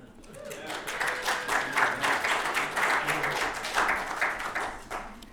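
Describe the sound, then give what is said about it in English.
During a sermon at Santa Cruz Baptist Church, the audience breaks into sustained applause after hearing of three births in three weeks. Many hands clap in a dense, steady patter that swells quickly and holds at a fairly even level for several seconds. “I didn't know that that would get the clapping from my sermon, but we'll take it.”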